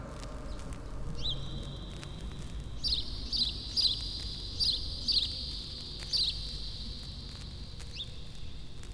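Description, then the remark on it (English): A house sparrow chirps repeatedly, with short, bright, high chirps coming in a loose irregular series over a steady faint outdoor background hum. No one speaks. “House Sparrow.”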